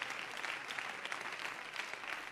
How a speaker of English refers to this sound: Now, if you're going to help me preach tonight, would you just clap and let me know that? Would you do that? Clap as unto the Lord, for he is good.